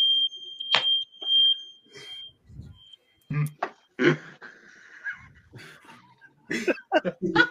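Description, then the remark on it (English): A shrill, high-pitched smoke alarm tone sounds steadily for the first couple of seconds, then fades under a jumble of sharp barking-like yelps and someone talking. “I was not happy when I was trying to make a video to say happy Thanksgiving, and then all of a sudden a fire alarm goes out.”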